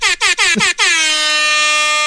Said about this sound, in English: Now that I have the webcam and I'm looking at you, I'm disappointed that it's not like an actual air horn. Like, I always knew it was just an app